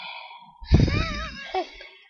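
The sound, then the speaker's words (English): A voice imitates heavy, wheezy breathing: a raspy, drawn-out exhale with a whistling tone, followed by a shorter breathy catch, with no words spoken. “So, can you hear some breathing on the recording last time?”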